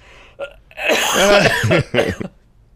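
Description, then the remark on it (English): A person coughs and sputters after water goes down the wrong way, a short throat-clearing burst followed by a longer strained, wheezy cough and a final hack, fairly loud. “I swallowed water wrong. Oh, no. It went down the wrong pipe?”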